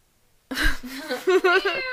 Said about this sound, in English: I don't know if we've mentioned this before, but Capone, the one that just meowed, is literally 19 pounds. He's a massive. He's a chonky boy.